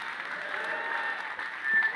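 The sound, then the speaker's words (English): An audience clapping steadily, a dense, continuous patter of many hands with no voices, holding at an even level and swelling slightly near the end. “You're clapping this good house,”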